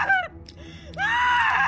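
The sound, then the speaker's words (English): A person screams loudly: a short falling shriek, a brief pause, then a sustained, strained high-pitched scream with no talking around it. “I screamed myself hoarse as Bleeder descended towards me.”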